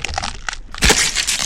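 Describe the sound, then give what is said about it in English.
A skull being crushed between two hands: scattered crackles lead into a sudden loud, grinding crunch that keeps splintering and cracking until the end, with no voices. “Before she could do anything, he crushed her skull between his hands.”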